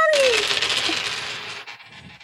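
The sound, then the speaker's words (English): Several dice clatter and tumble across a hard tabletop in a quick, bright rattle lasting about two seconds, fairly loud, with no one speaking. “That's too many withering dice, eyes.”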